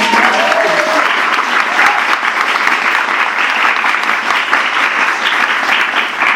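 Steady, loud applause from an audience, a dense wash of many hands clapping at once that holds its level for several seconds without letting up.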